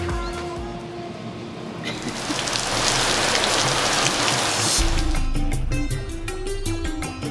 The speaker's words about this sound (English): raindrops in my face, in my eyeballs. I still get them in my face, not my eyeballs.